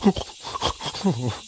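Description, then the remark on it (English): A storyteller's voice imitates a warthog, an unskilled hunter who failed to catch any food, whimpering aloud: a short run of pitched, moaning whines and grunts that rise and fall over about a second and a half, with no words spoken. “The unfortunate, unskilled hunter whimpered aloud.”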